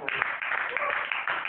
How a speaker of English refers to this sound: We can clap for the man of God.